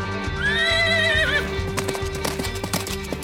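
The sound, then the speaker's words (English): A horse lets out a shrill, wavering whinny, then its hooves strike in a quick, uneven rhythm as it gallops off out of an opened stall gate with a rider clinging to its mane, fairly loud. “And then they opened the gate. And that horse took off faster than a jackrabbit on fire.”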